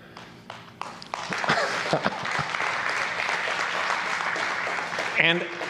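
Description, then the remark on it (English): A few scattered hand claps grow within a second into steady, dense applause from a church audience during a sermon on clapping hands, which keeps going throughout, with a brief voice cry rising above it near the end. “And the will of the people was to be reminded to clap your hands.”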